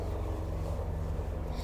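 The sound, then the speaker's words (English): A helicopter flying overhead drones steadily, its low engine hum carrying a rapid, rhythmic rotor throb that stays even and fairly loud throughout the short stretch. “Did the helicopter disturb you in any way?”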